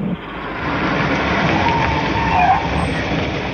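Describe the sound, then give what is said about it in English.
A car rumbles steadily, its engine and road noise filling the whole stretch, with a faint brief squeal of brakes as it pulls up around a bend, out of sight of a lookout tower. No one speaks. “Will you stop around the next bend? We'll be out of sight of the lookout.”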